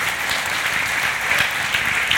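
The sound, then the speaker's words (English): An audience applauds the panelists steadily, a dense, continuous patter of many hands clapping at an even loudness throughout, with no voices standing out above it. “Let's have a round of applause here for our panelists.”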